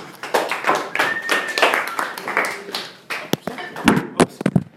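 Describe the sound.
A crowd at a venue with a bar applauds a comedian taking the stage, a dense burst of clapping mixed with cheering voices that thins out into a few scattered, sharp claps toward the end.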